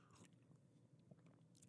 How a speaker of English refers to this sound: Okay, so give me a second to get a sip of my coffee.